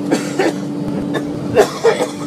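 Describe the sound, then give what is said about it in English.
A man in the airplane seat in front coughs and wheezes in short, rough bursts, a few coughs spaced across a couple of seconds, over a constant low engine-like drone. “Coughing and wheezing and coughing and those were the nice coughs.”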